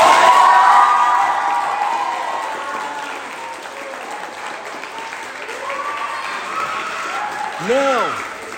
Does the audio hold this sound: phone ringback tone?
no